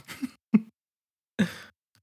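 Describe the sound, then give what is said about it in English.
A voice imitates a man coughing during a physical at the doctor's: a couple of quick, rough bursts, then after a short pause one longer, raspy cough that trails off, moderately loud with nothing else around it. “He's just like, cough.”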